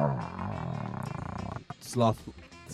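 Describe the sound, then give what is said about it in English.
A person imitates a dinosaur roar with a long, loud, rumbling growl lasting over a second, followed by a couple of short, breathy vocal bursts. “And can people find your music and your best dinosaur impression?”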